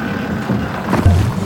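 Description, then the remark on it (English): Trash Truck's big lifter arms move as they reach for something, with a steady, loud whirring and mechanical grind over a low engine rumble. The noise swells briefly near the end, with no voices. “We sure are lucky to have a trash truck for a friend. Ooh-wee. Look at those arms go.”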